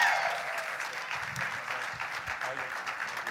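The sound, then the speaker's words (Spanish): Steady audience applause welcoming a visiting pastor, a dense wash of many hands clapping at an even, sustained level throughout, with no pauses or voices standing out. “Lo recibimos con un fuerte aplauso al Señor.”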